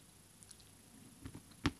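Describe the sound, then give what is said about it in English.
Soft, wet mouth sounds of licking sprinkles off the rim of a glass holding a bubbly pineapple drink, a few faint smacks building to one sharper click near the end, with no talking. “Let me lick the sprinkles first.”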